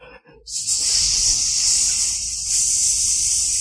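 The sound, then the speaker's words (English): A person makes a loud, sustained hiss with their voice, a steady bright rush of breath lasting about three seconds after a brief soft murmur at the start. “Why are you hissing at me?”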